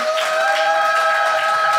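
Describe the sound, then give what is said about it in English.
A steady wash of audience applause with some cheering for Athena Kugblenu, dense and continuous throughout, with a sustained musical tone humming underneath. “Another round of applause for Athena Kugblenu!”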